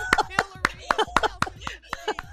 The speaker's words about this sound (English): There you go, clapping uncontrollably. I told you, I don't know what it is.